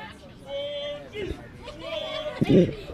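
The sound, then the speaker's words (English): A wrestling match crowd cheers and chatters, a steady roar of many voices swelling with sharp impacts near the end, and no clear single voice speaking. “You hear this crowd coming alive”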